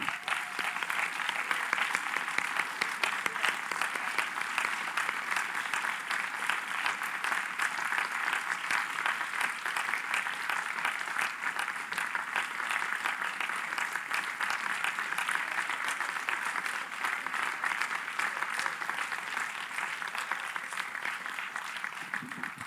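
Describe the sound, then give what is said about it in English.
Sustained applause from a live audience, a dense crackle of many hands clapping steadily at an even volume for over twenty seconds, with no talking over it. “And I just would like, if you could indulge me, just to give them just some applause.”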